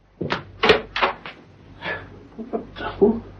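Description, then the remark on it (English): A tall cupboard door by the door of the room being opened, with a quick run of wooden knocks, creaks and rattles spread over a few seconds, fairly loud and with no voices. “Finally, Steed moved over to the tall cupboard by the door.”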